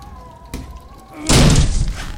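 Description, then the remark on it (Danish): A locked door is forced open: one heavy thud against it, then a loud crash as it is broken in, with rattling and scraping trailing off afterward. “Hvis de ikke svarer, bliver jeg nødt til at slå døren ind.”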